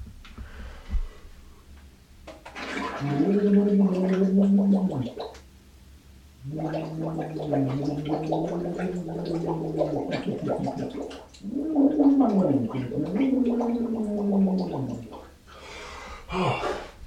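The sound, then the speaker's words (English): A voice hums and bubbles into a sink full of water with the face put in it, in three long, warbling stretches with gurgling tremolo, broken by short pauses, followed by a quick breath at the end. “I'm going to put my face in the water, and I'm just going to express myself.”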